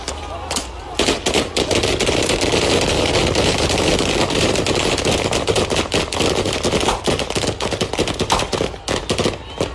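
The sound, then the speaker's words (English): Rapid, sustained bursts of gunfire crackle loudly over several seconds, dense overlapping shots with a few sharper isolated cracks, over shouting voices: the South African Police Service firing on a crowd of striking mine workers at Marikana, North West Province, South Africa, on 16 August 2012. “And then, a hail of bullets.”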